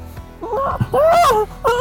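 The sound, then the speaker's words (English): A voice imitates a dolphin's mating noise with three loud, warbling squeals that bend up and down in pitch, each a drawn-out, moaning cry with brief breaks between. “That's the dolphin sex one.”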